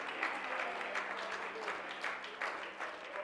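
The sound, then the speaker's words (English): A large crowd, asked to clap once more and shout with a voice of triumph, claps steadily in a dense, continuous wash of applause, with scattered voices calling out and cheering through it, fairly loud and reverberant. “Can you clap your hands one more time and raise your voice?”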